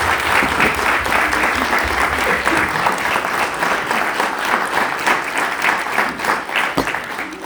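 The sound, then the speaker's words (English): An audience applauding a panel steadily, a dense, continuous patter of clapping that stays loud and even for several seconds without any voices rising above it. “But can we give my panel a round of applause, please?”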